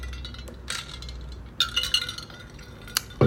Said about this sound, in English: I'm currently drinking coffee right now, and actually let me take a sip real quick before I continue.